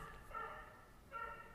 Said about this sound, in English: That dog sounds like a seal. Somebody get that seal out of here.